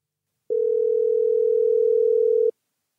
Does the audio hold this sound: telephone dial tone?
yes